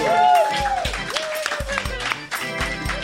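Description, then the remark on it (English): A small crowd claps and cheers for a few seconds, a dense wash of applause with voices whooping over it, steady throughout, applauding Team Montague at the end of round one of a quiz. “Round of applause, Team Montague.”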